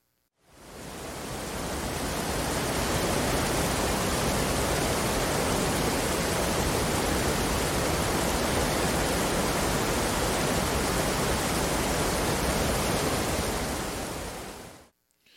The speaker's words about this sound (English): So, you know, something relaxing, something to kind of for us to, let's take a minute, let's take a little 20 seconds or so, and let's listen to the waterfall. And if you've got video, you can watch the waterfall as well. Here we go.